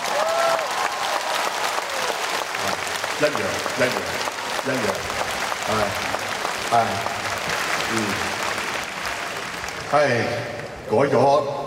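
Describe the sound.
Sustained audience applause at an afternoon concert show fills the whole stretch, a dense steady patter of many hands clapping, with voices calling out over it and a brief swell of cheering near the end.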